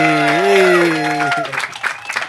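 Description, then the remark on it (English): A drawn-out shout or cheer rings out, then gives way to scattered clapping from a small group of people, fairly loud, trailing off unevenly, as NFL player T.Y. Hilton walks into the room. “We've generated a little bit of a crowd here. That's what happens when T.Y. Hilton walks into the room.”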